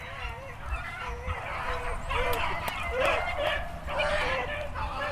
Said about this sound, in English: Let's go, let's go, let's go, let's go. Look at them go. Dogs are running.